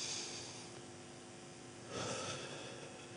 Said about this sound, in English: Take a breath in.